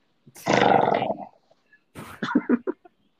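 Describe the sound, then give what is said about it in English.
A loud, rasping growl-like roar lasts about a second, then a shorter series of throaty, pulsing growls follows after a brief pause. It is prominent, with no talking. “Shut up, Predator Growl.”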